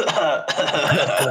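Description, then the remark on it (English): Several short, raspy coughs burst out in quick succession, close and fairly loud, blending into a bit of breathy chuckling. “We're in Seattle though, just like coughing noises.”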